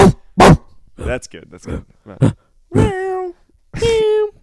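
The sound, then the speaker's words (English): A person imitates a big dog barking with a few short, gruff vocal barks, followed by two longer, drawn-out howling cries, all fairly loud. “Can I do a dog?”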